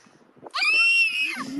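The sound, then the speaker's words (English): A child lets out a loud, piercing scream right up against the microphone, holding one shrill note for about a second before it wavers and drops off. “Screamed right into it.”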